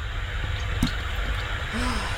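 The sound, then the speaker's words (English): Beer pours steadily into a glass and forms a thick head, a continuous low gurgling rush with a soft fizzing hiss, broken by a brief sharper splash partway through, and no talking. “I'm just pouring all of mine.”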